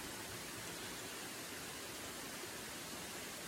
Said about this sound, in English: There are several waterfalls that continually fall into the sinkhole. It has an almost alien look to it, but in a beautiful way.